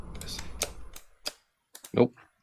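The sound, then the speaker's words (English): A handful of sharp, clicky computer keyboard keystrokes land at irregular intervals, moderately loud, with a low rumbling background noise in the first second. “I heard you typing earlier.”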